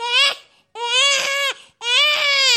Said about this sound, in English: I was on my way to shul, and I passed by this house, and I heard a baby crying. Not just crying, but mama screaming.